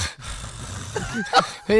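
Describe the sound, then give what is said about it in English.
Heavy, labored breathing of a man after doing exercise reps, a steady run of loud, rough breaths with a few strained, groan-like voiced bursts mixed in, ending on a sharp gasp. “This is his breathing.”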